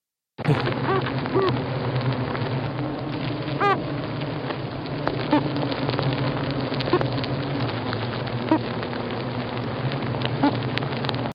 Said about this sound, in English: Yeah. So, what this sound is made by bees. Bees. Bees. And they are calling it the mystery of the whooping bee. Yeah. And it is actually, before anybody gets carried away, it's not actually a bee speaking, shall we say. It is a vibration.